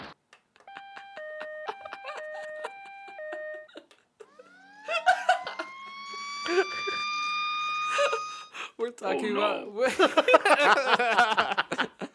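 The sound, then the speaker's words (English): A cartoonish car crash sound effect: a quick run of beeping electronic tones, then a long rising screech, ending in a loud burst of noisy clatter with laughter-like sounds. “You should play the car crash sound effect.”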